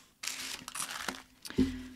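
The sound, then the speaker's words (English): Papery crinkling and rustling in a steady flurry for over a second as tissue paper is handled while unwrapping ornaments, ending with a short soft thump and faint hum. No one speaks. “I'm going to save this tissue paper as well so that I can rewrap these guys.”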